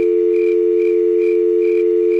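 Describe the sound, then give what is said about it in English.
A telephone dial tone hums steadily and loudly for the whole stretch, one unbroken pitch with no voices or pauses, just a faint pulsing shimmer higher up. “Let's check in over at our busy phones.”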